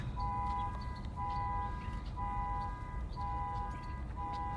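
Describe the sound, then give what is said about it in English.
Someone's alarm going off outside, down below, blares in regular pulses, a steady high electronic tone sounding about once per second for half a second at a time, over a constant low rumble of background noise. “Somebody's alarm going off down there.”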